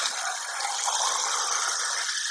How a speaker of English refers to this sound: All right, so now I think I'm going to add another can of water to this.